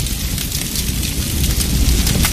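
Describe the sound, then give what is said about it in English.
A spreading household fire burns steadily in the middle of the night with a deep, rumbling roar, broken by scattered sharp crackles and pops. It is fairly loud, and no one speaks. “In the middle of the night, there are two sounds a spreading household fire can make. Here's the first.”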